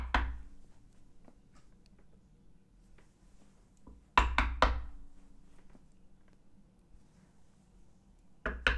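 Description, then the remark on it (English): Sharp knocks on a wooden door: one knock, a pause, then a quick burst of three, and after another pause two more. The knocks are loud over a low background hum. “Now, if you even go to the door and knock, here's what would happen.”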